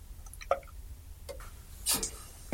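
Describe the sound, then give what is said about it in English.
Young Henry's beer being poured into a glass, heard as a few soft drips followed by a brief frothy splash near the end, quiet, with no talking. “So now I'm pouring the Young Henry's.”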